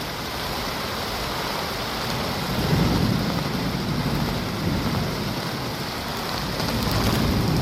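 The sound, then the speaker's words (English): Heavy rain pours down in a steady, dense hiss, beating in through an open door, with a low rumble of thunder swelling faintly beneath it partway through. No voices are present. “Won't you shut the door? The rain's beating in.”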